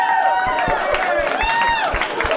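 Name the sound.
audience clapping and cheering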